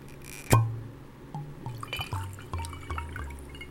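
A glass is set down with a sharp clink, then liquid glugs into it in a series of short, resonant splashes, with no voices.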